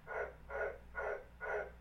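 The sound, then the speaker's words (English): A tree frog croaks four times in a steady, evenly spaced rhythm, each call a bright raspy burst, clear against a low background hum, with no talking. “oh, there goes the tree frog.”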